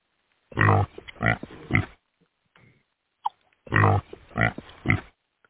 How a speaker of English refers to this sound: There you go. Ooh, I got a lot of oinks.